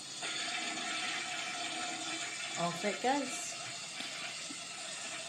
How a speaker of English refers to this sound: you are going to get a flush down the loo, if I can find it.